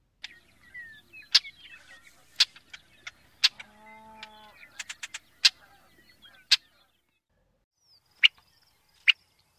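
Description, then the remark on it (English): Brewer's blackbird giving sharp, dry chack call notes, about a dozen at irregular intervals, fairly loud, with a low mooing sound briefly in the background midway. “And Brewer's blackbird.”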